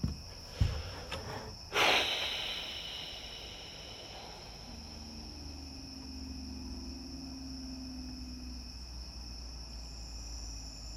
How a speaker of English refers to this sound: I think it moved behind me. It was in front of me, and then it was closer in front of me, and now it's like behind me somewhere. Where are you, cricket? I don't know.